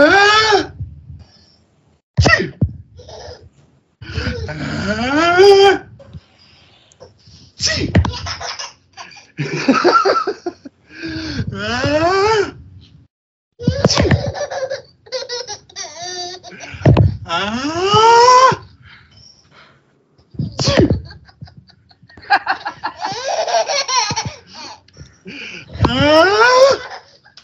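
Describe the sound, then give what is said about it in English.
A father sneezes again and again in sharp bursts, each one followed by his baby's delighted, high-pitched giggling and wheezy laughter. “The bubble likes daddy sneezing.”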